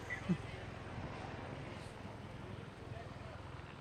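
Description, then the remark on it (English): A helicopter following a bike rider at the Tour de France drones steadily overhead, its low rotor thrum pulsing continuously and evenly for the whole stretch, with faint indistinct voices murmuring underneath. “We have a helicopter, which is usually the sign of a bike rider.”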